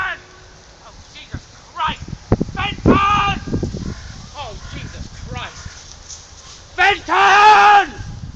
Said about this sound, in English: It's in the middle of London, and there's this group of sheep, and this dog's chasing him, and he's like yelling out the name of the dog, like exasperated.